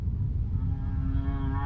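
A male humpback whale's song in warm breeding waters: a long, slowly rising moan with rich harmonic overtones, sung over a constant low underwater rumble and heard without any talking.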